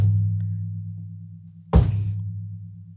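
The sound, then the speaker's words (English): A voice imitates the heavy crash of two thick vases falling after someone bumped into a table: one abrupt, loud, noisy burst that trails off over about a second, above a steady low hum. “I don't know who did it, me or my brother, but we bumped into this table. Both of them vases fell, man.”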